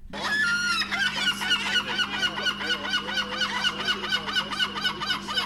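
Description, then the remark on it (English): A seagull squawks loudly, a rapid string of harsh, rising calls running without pause over a steady low hum, with no one talking. “Feagle the Seagull, a feathered friend till the very end”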